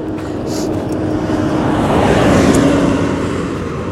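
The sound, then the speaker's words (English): Loud, steady roar of many trucks rolling along a road, a continuous rumble that swells slightly midway as a truck passes, with no voices. “Lots of trucks out.”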